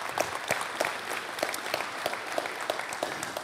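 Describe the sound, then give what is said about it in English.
A church audience at Valley Real Life claps steadily as a new elder is introduced, a dense wash of many hands with no voices, holding an even moderate level throughout the few seconds. “So we can just applaud for that.”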